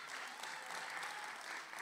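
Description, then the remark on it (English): Steady, sustained applause from a church audience while two people come up to the front, a dense wash of many hands clapping at an even level throughout with no individual claps standing out and no one speaking. “Don't stop clapping until they get up here.”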